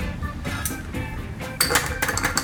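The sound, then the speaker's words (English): Bright glassy clinks of an ice cube being added to a cocktail glass of Campari and frothed fresh orange juice, several quick taps, with a busier rattle of clinks near the end over a low background murmur. “Add another ice cube.”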